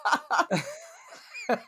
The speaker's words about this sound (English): That's me just cackle coughing.